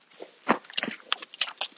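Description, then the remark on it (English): A dog scrambles after a kicked stone on a gravelly path: a handful of sharp scrapes and clicks, irregular and quick, with soft pattering between them and no talking. “I'm just going to start kicking a stone. A, Wolfie likes it.”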